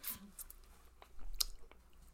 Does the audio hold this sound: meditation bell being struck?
no